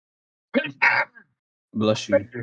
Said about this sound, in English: Bless you. Man, the mic's so cracked I could barely hear the sneeze.